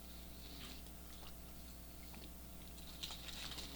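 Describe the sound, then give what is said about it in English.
Quiet chewing of P. Terry's french fries, with soft irregular crunches and mouth sounds over a steady low hum, slightly sharper bites near the end. Nobody speaks. “I'm munching down on these P. Terry fries.”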